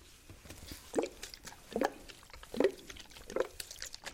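Cleansing water drips or squirts in four distinct, evenly spaced bursts about a second apart, moderately loud, as it is used to clean off a person's face, with a faint wet background hiss and no voices.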